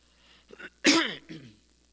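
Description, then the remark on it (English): A sharp cough bursts out loudly, framed by a softer throaty rasp before it and a smaller follow-up hack, with no talking around it. “Excuse me, I didn't mean to cough into my throat.”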